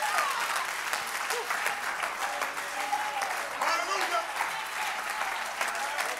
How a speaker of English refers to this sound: If you got that testimony, clap your hands unto the Lord.